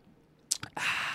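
sipping beer

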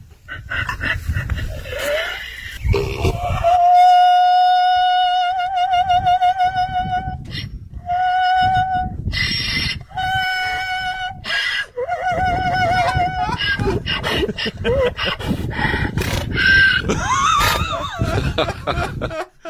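donkey braying excitedly

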